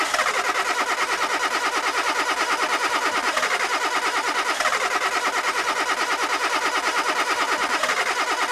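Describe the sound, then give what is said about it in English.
A car engine cranks over and over in a fast, steady rhythmic churn without catching, loud, running continuously with no voices. “Why won't it start?”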